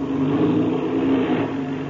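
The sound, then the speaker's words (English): A small airplane engine is given a burst as the plane coasts toward the south end of the field, running at a steady, loud drone with a low humming tone, holding even throughout the two seconds with no voices. “Yes, yes, I'll have to give her a burst or two, all right.”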